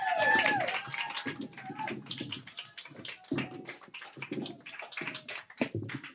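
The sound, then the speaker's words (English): An audience at a comedy show breaks into sustained applause for the night's last comedian, a dense wash of clapping lasting several seconds, with whoops and a sharp whistle at the start and scattered shouts throughout. “I want a round of applause right now going for”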